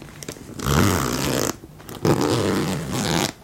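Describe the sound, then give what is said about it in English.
A zipper pocket on a handbag is unzipped in two rasping pulls, each about a second long with a short pause between, with no talking. “And there's a zipper pocket.”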